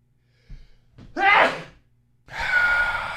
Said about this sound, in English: Steve, I'm going to sneeze, Steve. Hang on.